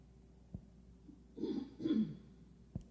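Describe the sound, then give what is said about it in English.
Two short, throaty coughs or throat-clearing bursts from people in a temple room during a meditation, reverberant, bracketed by a couple of soft thumps from people, a door or a chair moving; no talking, just a low steady background hum. “So there are the sounds in our room, coughs and people moving, or possibly a door or a chair moving.”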